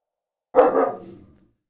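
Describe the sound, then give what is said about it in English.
A puppy lets out one sharp bark that trails off over about a second, with silence before and after it and no one talking. “Lucky puppy.”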